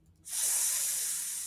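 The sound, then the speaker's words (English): A person imitates a hissing cobra with their voice: a sudden, loud, breathy hiss that starts abruptly and holds steady for over a second, with no talking. “Snake. Type of snake. Deadly. The cobra?”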